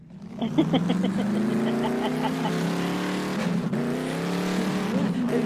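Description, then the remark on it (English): A voice imitates a car engine revving, a continuous buzzing drone that climbs and wavers in pitch, fairly loud, lasting several seconds without any other talk. “Just to get everybody excited, we have a little bit of car engine noises.”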